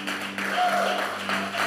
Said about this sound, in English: Can we just welcome those that are online? Can we just give them a welcome clap?